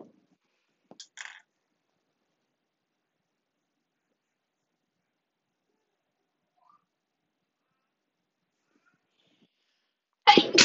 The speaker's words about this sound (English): I had to sneeze.